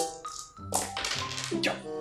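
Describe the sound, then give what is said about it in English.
Eight dice are rolled in sets of four, clattering and tapping in several quick, bright bursts, an energetic rattling that stops and starts over about two seconds while voices murmur underneath. “Some very enthusiastic dice rolling.”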